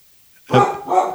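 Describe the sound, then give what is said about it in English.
A small orange female dog lets out two sharp, high barks in quick succession, fairly loud, after a brief moment of quiet. “There's our resident dog. She's just going to bark.”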